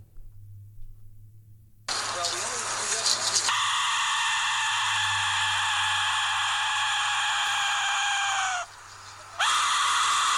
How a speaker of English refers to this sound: That's a whistle. Yes, and so I mean, one of them sounds like several people screaming, and so if you can imagine hundreds of those, it sounded like brakes squealing to me at first, but it just kept going on and on. That was that was very creepy.